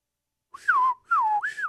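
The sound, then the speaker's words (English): A person whistles an imitation of a bird call: two clear, tonal phrases that glide up and then sweep down, followed by a rising, wavering note. Moderately loud, with no talking. “And I look up, directly over me is this bird.”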